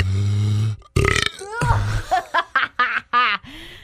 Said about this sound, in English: That was an actual belch that came after drinking soda.